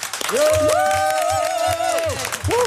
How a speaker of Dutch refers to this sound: Nou, dat was het meest vitale applaus wat ik in maanden heb gehoord. Dus volgens mij zit het hier bij Accolade wel goed.